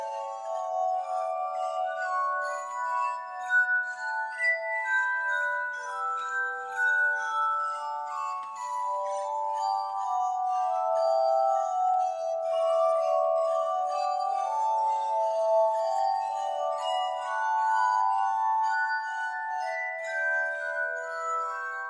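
A glass harmonica, made of glass bowls attached to a spinning wheel, plays a slow, flowing melody of pure, ringing tones that sustain and blend into one another, steady, with no voices.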